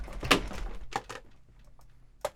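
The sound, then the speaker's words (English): A stand-in cardboard box is thrown down and lands with a loud hollow impact, then a few softer bumps and scuffs as it settles, ending with one more sharp knock. No one speaks. “But now let's talk about what comes in the box, and you know I can't throw it because it knocked me out of my chair, so I have a stand-in box.”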